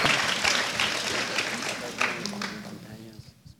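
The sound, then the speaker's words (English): An audience claps for a screen that finally got working, in a dense, crackling burst of applause that thins out and fades over about three seconds, with scattered voices and a few last claps at the end. “Ah, let's all clap for the screen that just finally got working.”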